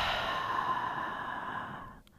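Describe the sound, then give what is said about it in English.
A long, steady breath pushed out through the mouth during breath work, after breathing in through the nose and holding for two seconds, a soft airy hiss held for about two seconds before trailing off. Fairly quiet, with no talking. “So breathing in, 3, 2, 1, holding for 2 seconds, and then breathing out through your mouth for 4.”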